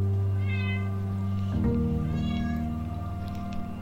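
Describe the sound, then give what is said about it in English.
A cat named Astral meows loudly and insistently, drawn-out cries repeating over a few seconds with a low steady hum in the background and no talking. “Your cat can be the Shaddai Haran of the podcast.”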